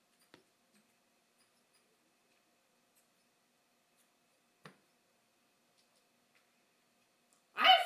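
A single loud dog bark bursts out at the very end, following several seconds of near silence broken only by a couple of faint clicks.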